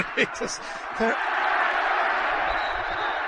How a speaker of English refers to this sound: Gets a big cheer. That's some atmosphere, isn't it? The lads, really. That's the Kilkenny lads.